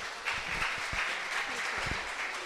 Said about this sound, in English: Okay, give a round of applause to this lady.